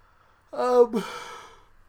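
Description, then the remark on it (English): A single voiced yawn: a drawn-out tonal groan that breaks into a breathy exhale and fades away over about a second, with no talking. “I'm just yawning all over the place.”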